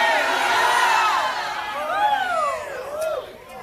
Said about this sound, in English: Somebody shout hallelujah.